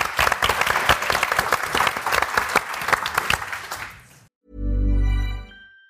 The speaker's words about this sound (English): Can we give our audience members a round of applause, please? Yeah, I think they would.